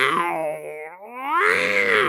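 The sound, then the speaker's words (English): A person voices a panther's growl: a loud, drawn-out, rasping moan that dips in pitch, then swells into a stronger roaring snarl for about two seconds. “Big old panther noise.”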